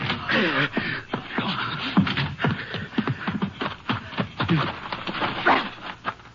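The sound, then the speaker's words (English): Someone fumbles at a door lock, producing a rapid, irregular string of clicks, rattles and scrapes, with soft whimpering sounds running underneath. “I can't get this flame lock.”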